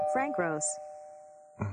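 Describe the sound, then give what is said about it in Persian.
A telephone rings with a short electronic chime, two quick bright tones followed by a steady sustained tone, while a voice speaks briefly at the start and again at the end. “این تلفن هی زنگ میزنن.”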